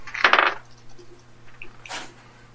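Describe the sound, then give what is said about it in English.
Two dice clatter and tumble onto a hard surface in a bright, rattling burst, then a second, softer clatter follows a moment later, rolled for a plus-wisdom check in a game. No one speaks. “as you exit the clearing, please roll me a plus wisdom.”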